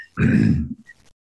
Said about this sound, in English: I will... I'll say it up at the front here that I've got a lingering cough and just apologize for some of those coughing sounds. They're just part of who I am right now.